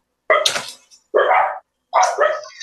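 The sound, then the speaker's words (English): Three loud barks in quick succession, each sharp and harsh with a brief pause between, from agitated, excited dogs reacting to someone ringing the doorbell. “and the dogs are definitely getting super excited about that.”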